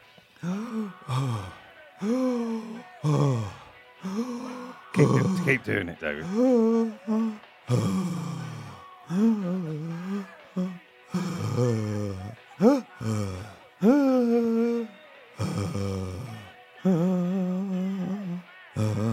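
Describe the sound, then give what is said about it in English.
A voice imitates the painful, labored breathing of a cracked rib: a steady run of strained, groaning gasps and sighs, fairly loud, with a brief spoken remark from another person. “But I found it problematic breathing. And can we listen to what that sounds like?”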